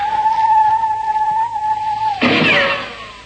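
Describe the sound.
A person imitates a bird call with a long, steady, mid-pitched whistle held for about two seconds, then breaks into a loud, breathy, hissing burst. No one talks.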